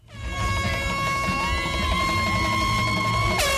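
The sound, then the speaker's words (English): Boat horns and hooters blare together in a loud, sustained chorus of overlapping steady tones, holding for several seconds with a low rumble underneath and no pauses, as boats greet an ocean rowing crew finishing an Atlantic rowing race at English Harbour, Antigua. “To the accompaniment of boats, cannons, horns and hooters, the Rota Recovery crew rowed their last strokes into English Harbour.”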